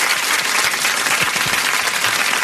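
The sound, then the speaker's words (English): A group of people clapping their hands together, a dense, steady wash of many overlapping claps with no pauses and no voices over it. “Clap your hands, everybody. Everybody, clap your hands.”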